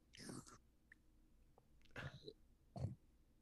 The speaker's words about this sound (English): Let me just take a quick sip.